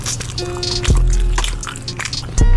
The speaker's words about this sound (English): That sound of open mouth chewing means it's time for the lunch hour here on Ken LaVica Live.